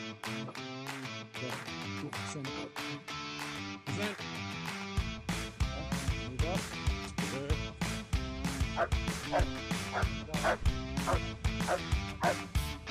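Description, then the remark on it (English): Dogs bark and yip loudly and continuously as a dog is brought out with its handler, a dense run of overlapping sharp barks and high yelps with a deeper rumble filling in partway through. “All right, we got a dog coming out.”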